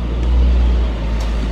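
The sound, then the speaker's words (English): A school bus engine rumbles steadily in a low, continuous idle as a class of fifth graders on a field trip climbs off on a sunny Friday morning at a presidential library in Simi Valley, California. No voices are heard. “On a sunny Friday morning, I watch a class of 5th graders climb down off their school bus in their especially nice field trip clothes.”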